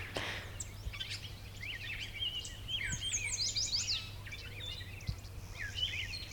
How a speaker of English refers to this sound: And some starlings. The sort of squealy sounds are squealy, grunty sounds are starlings.